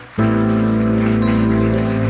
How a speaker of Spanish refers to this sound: ¿Quieren dar un aplauso a Cristo?